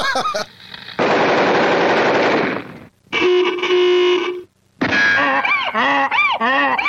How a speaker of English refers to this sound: The inevitability of the what's going to happen with the sound is when you hit that guitar, it's going to make the sound of a machine gun.